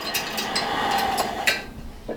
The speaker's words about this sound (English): I'm going to try to like shake it up a little bit so we can hear some more of that fizzle of the fermentation.